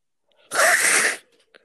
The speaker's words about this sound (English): Sorry, I had to sneeze for a second.